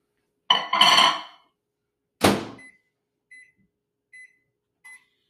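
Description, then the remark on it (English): A microwave oven door clatters and thumps shut, followed by four short, evenly spaced high electronic beeps from the keypad as it is started to melt butter for about 45 seconds. “Okay, that's cooking in the microwave now.”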